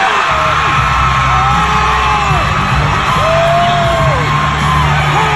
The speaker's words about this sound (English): Oh, listen to those cheers. They love the guy. All right. So the cheers go on and on and on. We don't have enough time we could spend the rest of the half hour listening to the people cheering for Ron DeSantis.